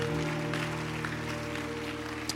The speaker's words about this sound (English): Those who are clapping are those who believe it. Yes. It's nice.